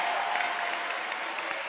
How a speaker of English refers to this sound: This is the, clap your hands for the man of God. This is a real man of God.